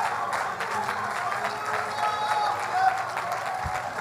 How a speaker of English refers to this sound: There ought to be something within you that wants to clap your hands, that wants to magnify God.